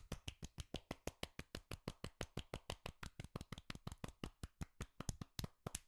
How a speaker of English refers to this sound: let's give Von Wagner the golf clap, please, sir.